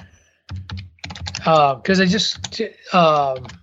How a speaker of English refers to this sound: Yeah. I'm going to type it. I'm going to apologize real quick, 'cause I'm going to do a little typing.